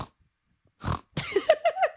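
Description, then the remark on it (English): A man's voice imitates a pig, giving a snorting grunt followed by a quick series of three or four rising, nasal oinks, fairly loud with no talking. “I don't hear you oinking.”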